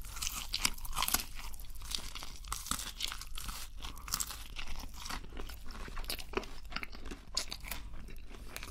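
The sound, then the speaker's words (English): Crunchy Burger King fast food, including chicken, being chewed in steady, rapid bites. Each crunch is bright and crackly, with wet mouth sounds between, and it continues without any talking. “Eating a BURGER KING Mukbang Feast!”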